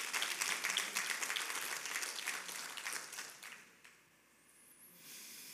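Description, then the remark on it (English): A crowd claps together in a dense burst of applause, a hand clap of praise to God, that fades out after about four seconds, leaving a quiet hush and faint hiss at the end. “If you believe that, I want you to give the Lord a hand clap of praise.”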